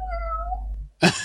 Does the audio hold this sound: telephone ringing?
no